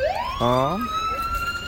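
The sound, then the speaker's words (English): A police car siren winds upward in a loud wail and holds its high pitch, with a brief burst of another tone and faint outdoor crowd noise underneath, at a transportation day event for Mobility Week. “And out here we have police motorcycles, police cars, fire trucks, snow plows, Coda buses.”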